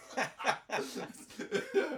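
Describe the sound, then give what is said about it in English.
A loud fit of harsh, gross-sounding coughing from a man acting sick: about six rough, phlegmy hacks in quick, uneven succession, with no talking between them. “And he's like coughing in a disgusting manner.”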